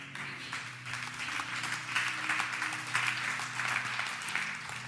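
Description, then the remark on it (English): Scattered, moderate applause from a church audience, a steady patter of claps that neither swells nor builds, with a low steady hum underneath and no voices. “Well, that was a pretty tepid response.”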